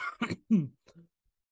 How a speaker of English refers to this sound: All right, sorry. I had a coughing fit there.